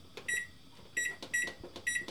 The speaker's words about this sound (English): And once you get your pan in the oven, set your timer for 15 minutes.